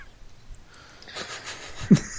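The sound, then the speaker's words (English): A single sneeze: a rising breathy hiss builds for about a second, then ends in one short, sharp burst with no talking around it. “Bless you.”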